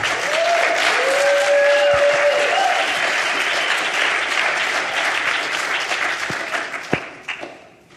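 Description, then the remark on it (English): An audience applauds steadily for several seconds at House Group Celebration, a dense wash of clapping with a few whoops, then the applause thins out and scattered final claps trail off near the end. “Clap for her one more time.”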